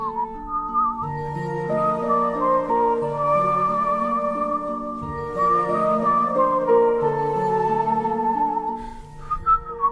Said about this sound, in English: And the main theme, there's a whistling. Mm-hmm. What is that literally? It's a whistle. It's me whistling.